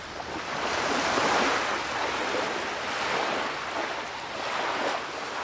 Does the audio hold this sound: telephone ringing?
no